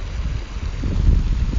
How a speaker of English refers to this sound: I'm standing by the waterfront in Tayport, and this is one of the water offshoots running through the waterfront into the river estuary here.